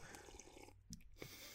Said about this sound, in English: I'm going to just sip my green tea because it helps me lose weight.